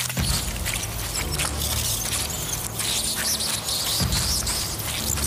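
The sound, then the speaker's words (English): A dense, continuous mass of shrill squeaking and chittering from thousands of rats screaming together as they give chase, loud with a steady low rumble underneath and no gaps. “The scream that erupted from the rats had now sounded like one all-encompassing roar.”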